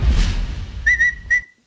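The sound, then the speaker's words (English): A person whistles a short, high, steady tune in a few sustained notes along with music on CNBC's Squawk Box, rising over a low rumbling background, then stops abruptly. “You whistling, you weirdo?”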